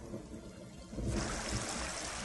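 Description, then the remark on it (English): Heavy rain pours down steadily in a deluge, a dense hiss swelling louder after the first second, with a soft trickling of running water underneath and no voices. “And then there was the pre-show movie, which, if you've seen it, you remember it, and it rained, and it rained, and it rained. The deluge.”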